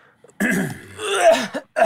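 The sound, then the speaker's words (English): A loud throat clearing, a harsh raspy rumble lasting just over a second, followed by the start of another rough clearing at the very end. “Did you use your cough button? Did you press the cough button?”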